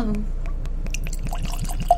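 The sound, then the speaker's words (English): Bourbon glugging from a bottle into a glass, a steady pour with rhythmic gurgles and rising bubbly tones lasting about two seconds. “Get that pour.”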